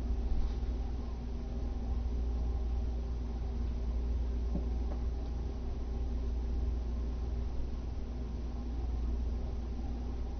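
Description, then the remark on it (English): A fan runs steadily throughout, a continuous soft whir with a low hum beneath it, unchanging in level and with no voices or other distinct sounds. “Like even as we sit here right now, and you let the ears open to this experience of sound, whether it's my voice or fan, the distant hum outside, shuffling in here.”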